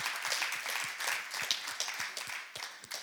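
An audience applauds steadily for about three seconds, dense overlapping claps forming a bright, crackling wash of moderate loudness with no voices over it.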